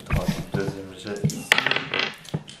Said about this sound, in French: enfin, lancez tous les dés, allez-y.